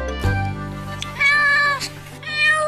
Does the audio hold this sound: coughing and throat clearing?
no